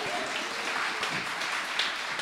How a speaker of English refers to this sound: Rising to raucous applause is Paul Kavanaugh.